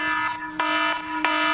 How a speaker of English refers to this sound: the alarm has been sounded. That is the alarm.